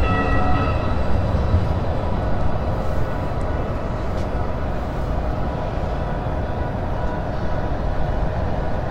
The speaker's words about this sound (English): That's the light rail going by, the D line, the mall buses are different than the light rail. The light rail comes in from the outskirts of town, goes all over the city.